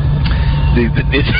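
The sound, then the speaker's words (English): A steady low bus engine rumble comes through a narrow, muffled phone line, with faint indistinct voices briefly rising over the droning vehicle noise. “Are you on the bus? Oh, gracious. Can you mute the bus?”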